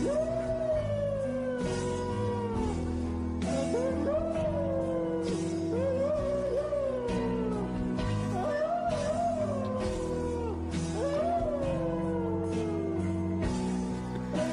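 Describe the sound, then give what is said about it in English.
A dog howls again and again in long, wavering, rising-and-falling cries, loud, over a steady droning tonal background that continues throughout. “Like, this is what happens when your dog doesn't get to go on the walk.”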